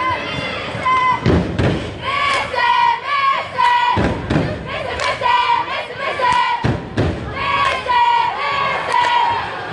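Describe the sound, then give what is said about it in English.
A loud crowd roars and chatters continuously at a season-opening basketball game between Dent and the Mustangs, with sharp squeaks of sneakers on a hardwood court and occasional heavy thuds of a bouncing ball echoing. “There's a big crowd in here.”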